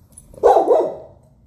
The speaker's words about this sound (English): And I think my dog wants to actually take part in the conversation. No.